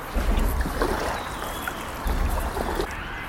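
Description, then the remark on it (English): A canoe paddle dipping and pulling through water in two strong strokes, with splashing and trickling water and a faint wind in the background; no one speaks. The canoe is taking on water. “Okay, I'll just keep paddling on my own, shall I?”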